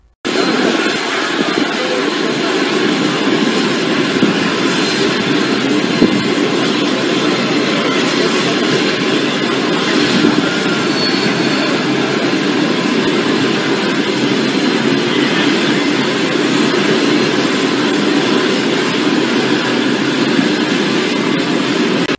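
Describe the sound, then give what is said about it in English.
A loud, steady aircraft engine roar drones on an airport tarmac without a break, a broad whooshing rumble that stays constant the whole time, with no voices, as Trudeau and his family leave the plane after a vacation in Costa Rica. “They're departing a plane when they went on a vacation in Costa Rica without any of their masks.”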